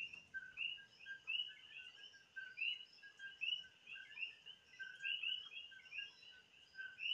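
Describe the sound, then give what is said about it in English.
A dense chorus of coquí frogs calling outside in the rain at 5 in the morning, their high, bright chirps repeating and overlapping steadily throughout, with a soft patter of rain beneath and no voices. “It's currently 5 in the morning and it's raining outside. You can hear the beautiful coquillas.”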